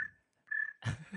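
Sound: cricket chirping sound effect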